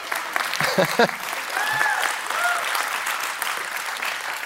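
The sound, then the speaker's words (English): Steady applause from an audience at a church service after a scripture reading, a dense, sustained patter of many hands clapping at even volume throughout, with a few brief voices and whoops rising over it early on. “I'm glad that's on video because the last service did not clap for that.”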